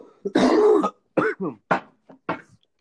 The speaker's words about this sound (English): Sorry for coughing. I was drinking water and it went down the wrong pipe.